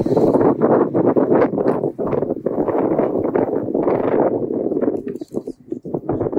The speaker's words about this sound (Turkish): Rüzgar altında konuşuyoruz. Doğada konuşmanın cilvesi.